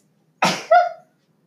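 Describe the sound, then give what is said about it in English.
A single loud sneeze: a sharp breathy burst followed by a brief voiced tail, then silence. “I sneezed.”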